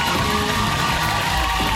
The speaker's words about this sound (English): And the crowd went wild.